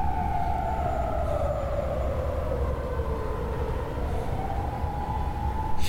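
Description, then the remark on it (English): A wailing emergency siren sweeps slowly up and down in pitch, steady and moderately loud over a low rumbling background, as if passing by outside on a street. “One second, there's a siren.”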